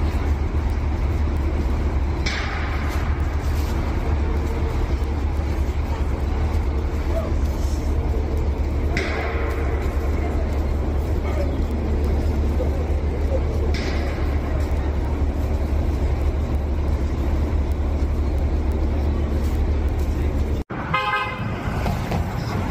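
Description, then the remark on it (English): Heavy engines of buses from the border arriving in New York City rumble steadily through a busy street, with a few short horn toots standing out over the traffic noise before a brief cut near the end. “Just wanted to show you, buses arriving.”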